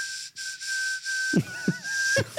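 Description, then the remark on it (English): Someone whistles with an open mouth, holding one steady, fairly loud high note, then adds three short breathy bursts with gliding, warbling pitch underneath, no talking. “Are you whistling with your mouth open?”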